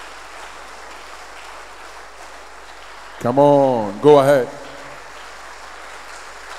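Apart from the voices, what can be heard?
audience clapping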